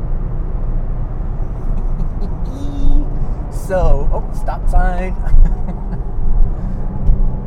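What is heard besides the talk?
car engine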